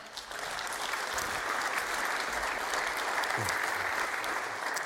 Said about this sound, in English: I think these guys are worth a mighty round of applause.